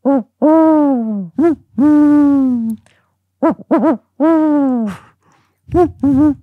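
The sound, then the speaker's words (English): A person imitates an owl with a string of low, voiced hoots made with the tongue curved back, some long and drawn out, others short and quick in pairs, fairly loud with brief pauses between. “Just imagine that you are an owl.”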